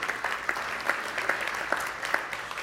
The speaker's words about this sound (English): Oh, man, that was like, oh, yes, well, that's very nice. Hey. It was a golf clap.